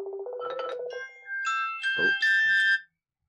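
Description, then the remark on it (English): A phone rings during an outgoing call with a bright electronic melody, a short run of rising and sustained tones that plays clearly for about three seconds, then stops. No one speaks. “I'm going to call him.”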